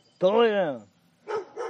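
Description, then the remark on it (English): A neighbor's dog lets out one drawn-out, wavering bark, then two short, quick barks after a brief pause, clear with nothing else behind them. “It's like, it's the neighbor's dog.”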